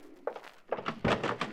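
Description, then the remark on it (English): A front door is opened for a visitor: a quick series of latch clicks and rattles, then a solid wooden thunk as it swings, with no voices present. “Okay, honey, it's the door. I'll get it.”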